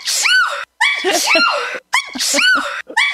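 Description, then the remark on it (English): A rapid string of loud sneezes, about four in quick succession with only brief pauses between them, each one a sharp, voiced burst. “Yeah, I have a sneeze ISO.”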